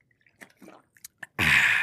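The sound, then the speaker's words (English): A few small, wet slurping clicks from drinking out of a plastic water bottle, followed by a loud burst of crinkling plastic at the end. No one speaks. “Hey, man, when y'all hear that water bottle, that mean your daughter model.”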